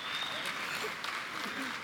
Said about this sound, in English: They're clapping for her.